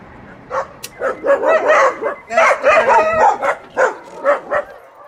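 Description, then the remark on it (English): Many dogs bark and yip in a busy, overlapping chorus inside a small home in Rosarito packed with hard-to-adopt dogs, loud, with repeated bursts throughout and occasional higher whimpering cries. “Their home is small and packed with dogs.”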